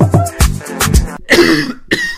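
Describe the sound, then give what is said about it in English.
A series of harsh coughs, about five in quick irregular succession, some trailing into a raspy, wheezy voiced tail, with no talking. “Check that cough, especially if you have been coughing for 2 weeks.”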